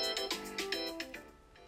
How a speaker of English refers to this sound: Oh, there's the timer.